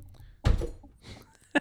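A loud bang from swatting a moth: one heavy, booming thump, then a shorter, sharper knock about a second later, with no voices.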